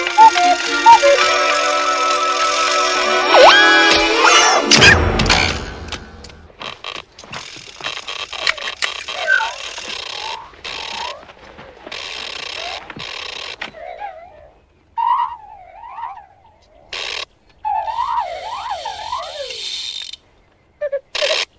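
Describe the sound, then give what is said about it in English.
A golden mechanical owl named Bubo clicks, whirs and wheezes: dense ratcheting gear noise at first, then sparse bursts of clicking broken by bright warbling, swooping electronic chirps, with no one talking. “Do you understand all those clicks and wheezes?”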